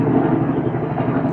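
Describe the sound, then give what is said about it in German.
A loud helicopter drones steadily overhead, its dense low rumble and rotor chop filling the sound without pause. “Ein sehr lauter Hubschrauber. Der Hubschrauber wird immer lauter.”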